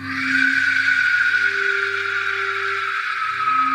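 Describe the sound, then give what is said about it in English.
An Aztec war whistle gives a loud, sustained shrieking whistle, harsh and noisy like a wailing scream, holding steady for several seconds with a raspy, airy texture and a faint low hum beneath it. “It's said you would know the Aztec warriors were approaching your village when you heard this whistle.”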